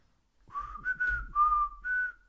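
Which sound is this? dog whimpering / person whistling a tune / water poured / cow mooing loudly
person whistling a tune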